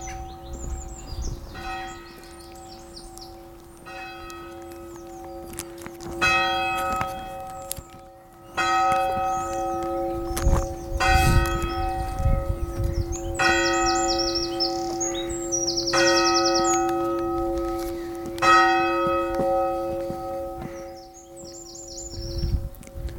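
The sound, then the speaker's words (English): Church bells in a churchyard ring out for 12 o'clock midday with a steady, sustained humming tone while birds chirp and tweet in bright bursts over the top, with no one speaking. “That's 12 o'clock midday.”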